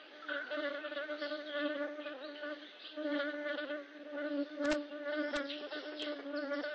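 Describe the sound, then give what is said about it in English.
A bee buzzes steadily for several seconds, its droning hum rising and falling slightly in pitch and volume, with a few faint clicks near the end and no voices. “Why did the bee go to the doctor?”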